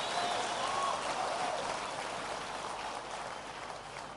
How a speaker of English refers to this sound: Clap your hands for the Lord if you can, somebody.